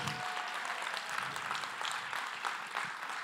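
A crowd applauds steadily for a preacher, many hands clapping in a dense, even patter that holds at a moderate level for the full few seconds, with no voices over it.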